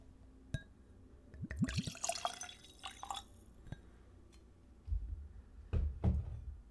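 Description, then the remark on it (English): A spirit pours from a thick glass bottle into a nosing glass in a short, gurgling burst, framed by a few sharp glassy clinks and soft handling knocks, with no one talking. “All right, let's give it a pour.”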